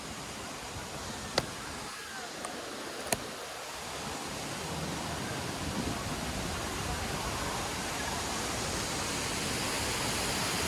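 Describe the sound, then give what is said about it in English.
A small waterfall pours steadily into a little stream in a theme park, a constant rushing hiss of water that fills the whole stretch, with a couple of faint sharp clicks near the start. “We're stepping over here to this little stream flowing with this waterfall, and I just love the look and feel of it.”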